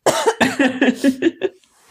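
A loud fit of coughing: about seven harsh, rapid coughs in a row, each a short raspy burst, tapering off into quiet at the end.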